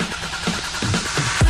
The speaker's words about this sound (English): The following is an ad for cars. You'll know it's an ad for cars because we'll use all the sound effects for cars we can find.